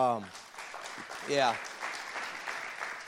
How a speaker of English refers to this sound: So you guys clap for her, welcome her.